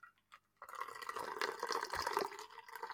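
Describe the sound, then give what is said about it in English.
After a brief hush with a couple of faint clinks, beer pours steadily into a glass, a continuous gurgling, splashing stream that keeps going to the end. “Let's get this pour on the go.”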